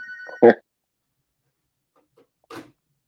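A brief electronic ring of a hotel room phone cuts off quickly, followed by a loud thump and, a couple of seconds later, a softer knock, with no one talking.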